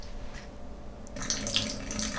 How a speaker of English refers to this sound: I'm now over my kitchen sink, or over my kitchen floor. I don't want to pour water all over. I turn it.